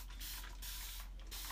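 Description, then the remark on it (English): Four quick spritzes of Bulgarian rosewater from a pump spray bottle, sprayed around the hair, each a short airy hiss in an uneven rhythm, with no talking. “So my hair, I use some Bulgarian rosewater. I like to spray it around.”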